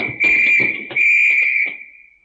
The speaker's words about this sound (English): What's that? The old woman must have turned in an alarm. Come on, the patrol will be here in no time.